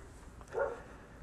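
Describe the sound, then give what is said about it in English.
A single short dog bark, fairly soft, rises briefly out of a quiet background hum at home, with no one talking. “Like I said, the place to myself besides the dogs.”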